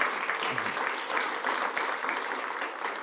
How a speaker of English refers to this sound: We're a church, and we're here to stay. More details coming on that. Yes, give it a cheer for that.